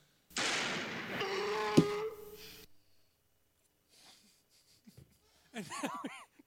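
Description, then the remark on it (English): A long, loud, rough snorting blast with a sharp pop in the middle, then a pause, a few faint rustles, and a short warbling, whinny-like cry from a voice imitating a horse being milked. “Someone does a voiceover of a horse getting milked.”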